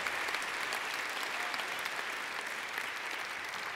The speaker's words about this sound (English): Can we give our God a round of applause? That we have so much hope in Him.